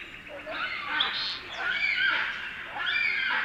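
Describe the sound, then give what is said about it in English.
A person's voice mimics birds squawking in the tree canopy as someone rides a bike through, giving a run of harsh, shrill, overlapping calls in three quick bursts, loud. “You ride your bike through, and they go... And they're like, the whole canopy comes alive.”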